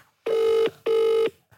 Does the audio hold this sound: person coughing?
no